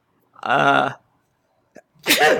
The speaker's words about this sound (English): Bless you. I had to sneeze that whole entire first one. I didn't like it.